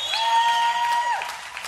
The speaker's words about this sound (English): Now I know I'm in church, right? So I know most of us would agree, absolutely, we got a hand clap, right? Absolutely, God matters.